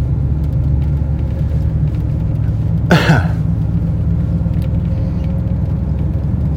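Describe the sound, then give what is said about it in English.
Steady, heavy low rumble of a truck passing on the road fills the whole stretch, with a brief sharp cough-like burst partway through and no talking. “I'll let me let this truck pass me here and scoot over so I can pull into the bank,”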